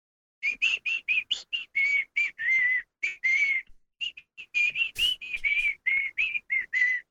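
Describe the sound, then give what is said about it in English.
A man whistles a lively tune alone while looking at his phone on a set during filming, a quick run of clear, bright notes with short gaps between phrases, steady in volume, with no talking. “And his dad is looking at his phone and whistling while we're shooting.”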